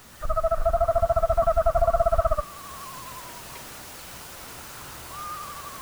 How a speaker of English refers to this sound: A sustained period of call and response, reminiscent of a soloist and a church congregation. The back and forth continued until another bird's call caused one of the screech owls to clam up and take flight.